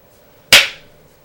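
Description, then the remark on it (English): A man claps his hands once: a single sharp hand clap rings out loud and alone, a bright, crisp smack that fades quickly into quiet with no voices present. “Clapped his hands.”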